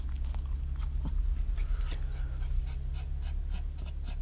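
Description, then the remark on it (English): A worried female dog pants in quick, breathy bursts, with a faint high whimper partway through, all over a steady low background hum. “She's just a concerned dog.”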